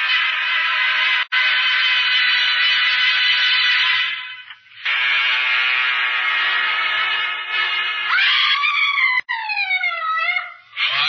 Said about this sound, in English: who screamed and thrown herself on the floor by my side.